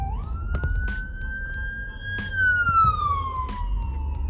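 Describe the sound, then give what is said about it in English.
An ambulance siren sweeps past, its steady wail rising, holding, then sliding lower in pitch as the ambulance drives by, with the rumble of road traffic underneath. “Ambulance really passed me while I was talking about the shooting.”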